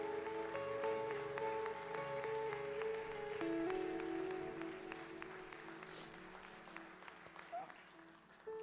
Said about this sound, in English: Come on, let's give Jesus Christ, the head of the church, a hand clap of praise.